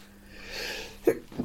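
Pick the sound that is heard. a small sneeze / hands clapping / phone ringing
a small sneeze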